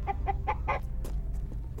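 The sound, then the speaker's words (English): A chicken clucks in a quick series of four or five short, nasal bursts, followed by a couple of sharper squawks, clear over a low rumbling background. “Let me put the feet down for the bird.”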